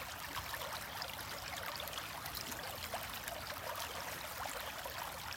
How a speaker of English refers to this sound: It's a canal that passes in front of you. Be aware of your rhythm for the flowing water. The water is crystal clear. It flows over and over again.